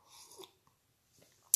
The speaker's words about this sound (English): Maybe I need another sip of this coffee to wake me up.